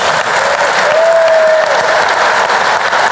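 A crowd applauds Dan North at the end of the .NET Rocks! show, a dense wash of many hands clapping at even loudness throughout, with a faint whistle-like tone rising briefly in the middle and no speech.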